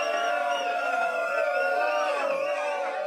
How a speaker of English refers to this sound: The twaddle team cheered anyway.